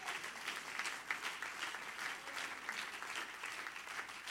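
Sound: audience clapping hands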